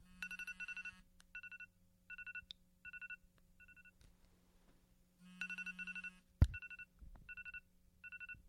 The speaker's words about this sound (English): So here's the alarm I have when I wake up in the morning. I want to see if anyone relates to this.